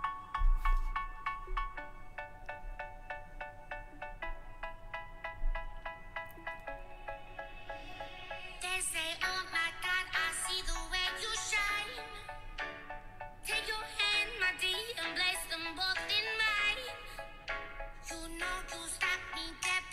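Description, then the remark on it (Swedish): A short music track built from knocking sounds, with steady rhythmic taps that grow busier and more layered into a bright, dense melody halfway through. No voices are heard. “Här kommer en liten musikpaus med min nya knacklåt som alla redan hört, men jag tycker den är bra ändå.”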